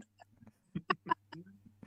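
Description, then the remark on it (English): A quick stifled sneeze, broken into three short, sharp bursts within about half a second, fairly loud over a low steady hum, with no talking. “Bless you.”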